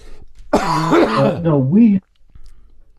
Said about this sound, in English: Beg your pardon, I coughed there.